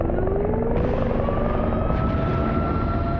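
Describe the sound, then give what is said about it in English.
Loud, steady helicopter rotor thrum with a dense low-frequency chop and a rising whine, sustained throughout as airborne helicopters fly overhead. “The helicopters are airborne now.”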